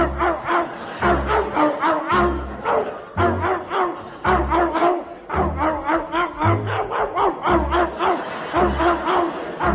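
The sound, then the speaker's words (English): Dogs, including Gladys and Jezebel, bark in a rapid, rhythmic pattern along to Jingle Bells, their yaps landing in time with a bouncy musical beat, a loud, steady string of barks following a cheerful melody. “And if one of you dogs barks one wrong note, back to Battersea you go.”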